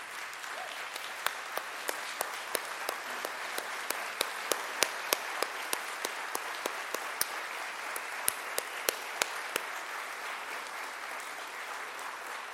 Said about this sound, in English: I think Chris and Jordan deserve a standing ovation and a round of applause right now.